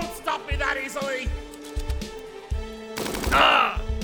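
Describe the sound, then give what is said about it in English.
Bursts of gunfire crack out in a quick, uneven rhythm, fairly loud, over a busy layer of shouting voices and other noisy action sounds. “That gunfire is gonna rip him to shreds.”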